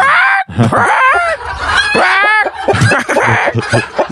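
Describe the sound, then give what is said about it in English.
A person imitates a clucking chicken, making a loud run of rapid, warbling clucks and squawky rising-falling calls with bright harmonic tones, continuing without pause for several seconds. “Okay, then I'll be clucking like a chicken from that.”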